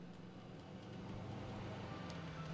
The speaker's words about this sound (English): Oh, that truck is drowning out this music.